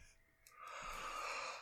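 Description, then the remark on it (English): A single drawn-out yawn, breathy and airy, swelling after a brief quiet start and fading at the end, with no talking. “Oh, there's in that just yawn.”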